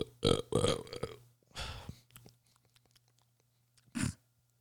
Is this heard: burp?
yes